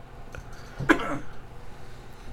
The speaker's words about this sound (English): we're about to witness our first death. Choking on water. Sorry about that.